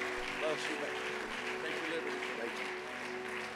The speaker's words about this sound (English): Let's give Brother Levine a great big hand as he comes.